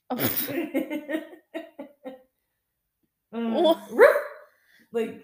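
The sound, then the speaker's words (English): A person imitates a dog, giving a quick run of short, yappy barks, then after a pause a louder, drawn-out woof mixed with laughter, clear. “For the next 5 minutes, you have to respond to every question with only a bark.”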